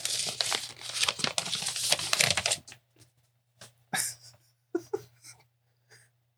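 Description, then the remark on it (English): Crisp crinkling of paper as a folded note found in a dice box is opened, a dense rustle for about two seconds followed by a few sharper, separate crackles and handling sounds. “There's a note in your dye box?”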